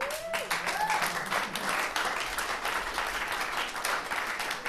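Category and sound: crowd, audience applauding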